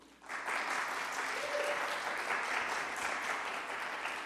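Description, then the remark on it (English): An audience applauds steadily for a filmmaker before a film screening in Seattle, a dense wash of many hands clapping that starts abruptly and holds at an even, fairly loud level throughout without a break. “So can we give a warm round of applause”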